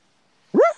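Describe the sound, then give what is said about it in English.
A single sharp dog bark rings out after a stretch of near silence, loud, with a rising then falling tone that trails off quickly. “Who's barking?”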